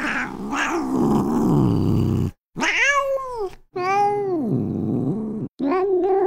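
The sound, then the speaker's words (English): An ornery cat, Cringer, yowls loudly, letting out three long, wavering, rising-and-falling cries separated by brief silences, with no talking. “It was just one particular friend of mine's cat that was extremely ornery.”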